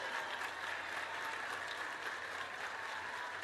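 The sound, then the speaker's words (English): A large stadium crowd at a college softball game between the Sooners and Alabama rises to its feet, cheering and applauding in a steady, dense roar that fills the whole stretch, with no voices standing out and no let-up from start to finish. “The crowd comes to their feet. Everybody comes to their feet.”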